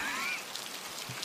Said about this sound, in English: I'm in the rain? Yes, quite. It's very wet.